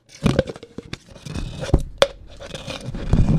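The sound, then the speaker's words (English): Harsh scraping of scissors against a vinyl record as it is being reamed, a run of gritty scratches broken by sharp clicks and snaps, getting steadily rougher over a few seconds with no talking. “I'm gonna ream my own vinyl.”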